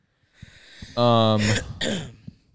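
A throaty, voiced rasp is followed by two sharp, breathy coughs in quick succession, fairly loud, with no talking around them.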